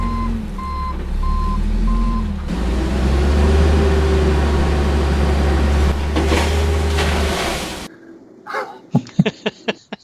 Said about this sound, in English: Back the truck up.